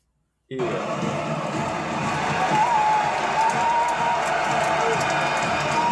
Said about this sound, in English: Hold on. What was that? That's just the fans cheering for you,